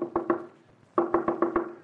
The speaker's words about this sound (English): Sounds just like the way the headless plowboy knocked on Judd Claiborne's door during the Civil War, daughter.